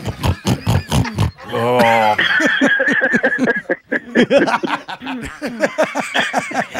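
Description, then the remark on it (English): A voice imitates a pig, making a run of rough, guttural grunts and snorts, with laughter and chatter mixed in around the noises. “Like a pig in the slop.”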